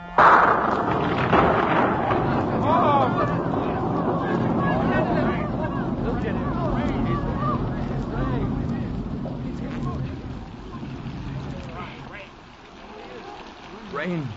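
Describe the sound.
Steady rain pours down in a dense, hissing wash that holds for the whole stretch, with a crowd of voices murmuring and calling out beneath it before easing near the end.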